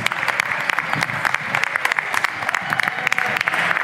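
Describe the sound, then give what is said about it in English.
An audience at a live Friday night event in Frisco applauds two musicians steadily, a dense patter of many hands clapping at a constant loud level for several seconds, with faint voices and cheers mixed beneath. “Let's give them a big round of applause, please.”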